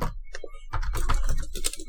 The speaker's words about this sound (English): Did … invent goth? I'm typing it into Google right now.